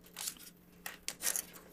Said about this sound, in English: You guys can see how my fine motor skills don't work. God, I'm destroying this envelope. Don't rip the paper. I'm not going to rip the paper.